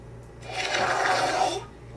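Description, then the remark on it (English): A fart meme sound effect played backwards: a raspy, hissing swell that builds over about a second and then cuts off abruptly, with a faint low hum underneath and no talking. “Fart meme sound in reverse.”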